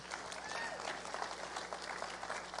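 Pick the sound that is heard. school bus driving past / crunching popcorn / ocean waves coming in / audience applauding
audience applauding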